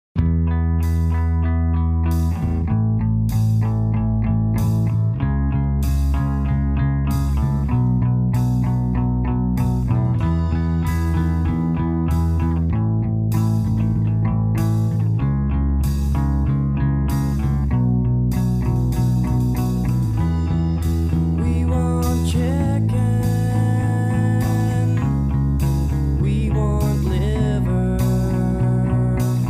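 The opening of an emo-style cover version of an advertising jingle: effects-laden, chorus-tinged guitar chords ring out and change every couple of seconds over steady, loud drum hits, with no voices throughout.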